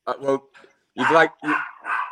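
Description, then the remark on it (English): Small dogs, a Chihuahua and a Pomeranian, bark and yap in a handful of sharp bursts as someone walks in through the door: a couple of quick yelps followed by three louder barks spaced unevenly over a couple of seconds. “You'd like to think big German shepherds, but I've got a Chihuahua and a Pomeranian.”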